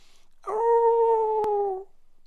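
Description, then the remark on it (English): A single drawn-out dog howl on a clear, cloudless moonlit night, held at a steady pitch for about a second and a half before tapering off, clear with no voices, a brief click in the middle. “somewhere, a dog howled.”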